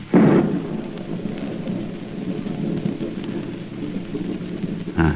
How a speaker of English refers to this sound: The air seems charged with thunder. I hear it in the distance. It is ominous, but it carries the hope of rain.